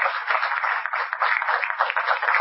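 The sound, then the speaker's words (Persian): An audience applauds a speaker steadily, a dense, continuous wash of many hands clapping at an even loudness from start to finish, with no voices rising above it. “ولی تشویقش کنید.”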